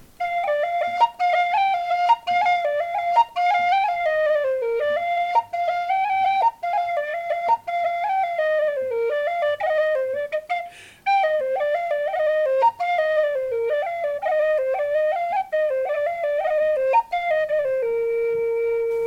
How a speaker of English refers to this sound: It's a 6-8. Yeah, here's just a quick taste of it on whistle.